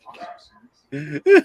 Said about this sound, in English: The dogs are not going to shut up. I'm doing a show here!